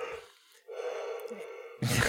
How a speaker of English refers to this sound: Sorry, bro. You're not boring me. I'm not tired. I just can't stop yawning. I slept like 5.5 hours last night.